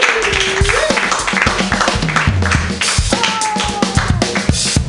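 An audience at a comedy show claps steadily for several seconds as the next comedian is introduced, a dense patter of hand claps, with a few voices and whoops rising faintly over the applause.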